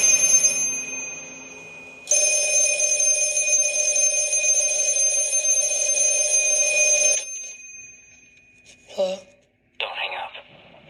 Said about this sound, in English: Oh, hang on. I'm getting a phone call.